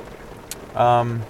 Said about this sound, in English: So hopefully this rain's not too distracting for you and quiets down soon.